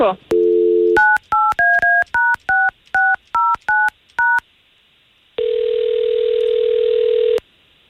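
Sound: telephone dialing tones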